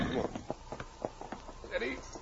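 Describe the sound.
Horses' hooves clip-clop in a steady, fairly quick rhythm of sharp knocks, moderately loud, with indistinct voices murmuring underneath.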